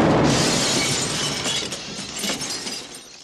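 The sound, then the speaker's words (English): A heavy crash as a woman's falling body smashes into a car on the street, glass shattering loudly at the start, followed by a spray of tinkling fragments that gradually fade over a few seconds. No voices. “it's so awkward because she jumps and in silence, we just see her fall and then she smashes into a car on the street.”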